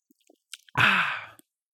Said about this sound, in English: So cheers to that, as I have a sip of Guinness in all of your collective honour.